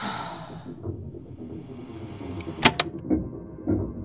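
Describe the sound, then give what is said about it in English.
A man leaving a meeting room slams the door shut with a sharp, loud bang and a quick rattling second knock, followed by a few faint thuds against a soft hiss of background noise. “leaves the meeting room, slamming the door behind him.”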